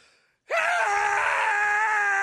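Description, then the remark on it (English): A voice mimics a cicada with a sudden, loud, sustained shrill buzz that holds steady for about two seconds after a brief quiet pause. “And then all of a sudden, giant cicada monsters show up, which is fun because, like, you know, we got the cicada pandemic down south, yeah. Which all they're trying to do is just this.”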